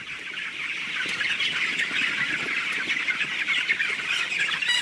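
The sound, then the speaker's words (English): A dense, continuous din of about 23,000 young broiler chickens squawking and peeping together in a sealed, climate-controlled poultry house at Valley Pike Farm in Virginia's Shenandoah Valley, a steady high-pitched chorus with no pauses and no voices. “About 23,000 young chickens will spend most of their lives in this sealed, climate-controlled birdhouse.”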